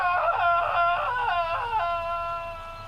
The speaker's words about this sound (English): That's it. That's John Howard's final speech when he opened the portal. Yeah, agonised screams. Because he fell into the portal.